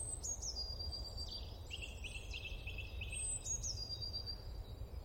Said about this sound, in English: to allow a bit more space to hear the birdsong and appreciate our natural surroundings